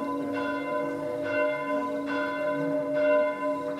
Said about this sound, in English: The ringing of the bells can be heard even deep down in the ground for some time after.